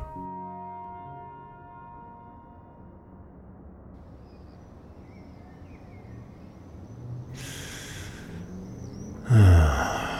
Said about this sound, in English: But here she is, at the edge of her bed, still breathing. In and out.